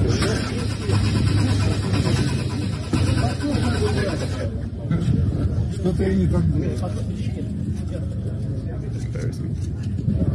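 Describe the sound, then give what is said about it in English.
The engine of a prototype car cranks over and over without catching, a steady grinding churn that runs for several seconds, loud, with people talking over it. “They do make a car. That does not start.”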